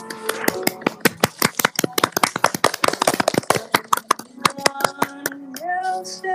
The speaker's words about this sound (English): Clap, applause.